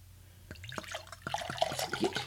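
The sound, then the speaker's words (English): Sherry pouring into a glass, starting as a thin stream and turning into a steady, gurgling glug that rises in pitch as the glass fills. The sound is clear, with no talking. “Now, you should know that our first step, no matter what we do, is we're going to pour some sherry.”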